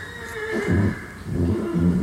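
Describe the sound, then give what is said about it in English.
A horse neighs loudly, a harmonic whinny rising and falling in two long bursts over a steady background hum, calling out because its pasture companion was just taken out for a ride. “That was actually a horse neighing because their pasture buddy just got taken out for a ride”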